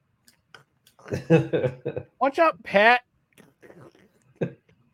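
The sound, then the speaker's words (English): A voice imitates Bugs Bunny munching on a carrot, with crisp crunchy mouth clicks and chewing noises scattered around a short burst of animated speech. “Munching on a carrot in the locker room.”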